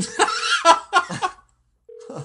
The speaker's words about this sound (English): What is that, the phone? Dude, no one ever calls us in here.